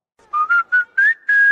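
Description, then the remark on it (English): A bright whistled jingle of five quick notes, the McDonald's fast food mnemonic, climbing slightly in pitch, with the last note held longer. No voices, just the clear whistled tune on its own. “And turned it into a whistle.”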